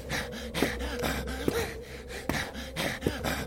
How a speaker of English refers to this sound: Do you hear his breathing? Ragged as a consumption patient.